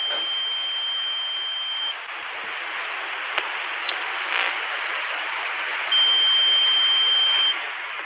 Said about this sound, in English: And then if you go into number 13, this is the tone that extends longer. Yeah. Let me go to 13, going to 13. Sound like Spock on the Enterprise.